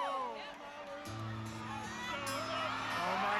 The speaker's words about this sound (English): And the crowd just erupted. It was just a riveting moment as a country music fan.